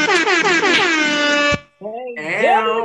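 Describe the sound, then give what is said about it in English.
A loud, blaring air horn sounds in rapid bursts for about a second and a half, stops briefly, then blasts again with a wavering, siren-like pitch. “I gotta give him another air horn.”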